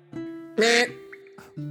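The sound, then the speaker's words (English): A duck named Lord Duckula quacks three times in short nasal bursts, the middle quack loudest and harshest, with brief pauses between calls and no talking. “First of all, I named that duck Lord Duckula when I was a child.”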